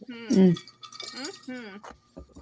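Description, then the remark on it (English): Glasses clink together in a toast to Kevin Smets, a few bright, brief taps amid overlapping voices calling out cheers. “So, cheers to Kevin Smets.”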